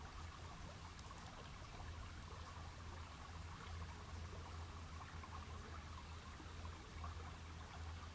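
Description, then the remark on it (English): A river in the woods flows steadily with a constant, soft rushing wash and no pauses, fairly quiet, with no voices present. “It's just your special time to be in the woods next to this beautiful river.”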